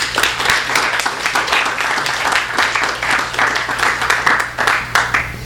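A crowd applauds steadily for several seconds, a dense wash of many hands clapping at once with a few sharper individual claps standing out, fairly loud throughout and with no one speaking.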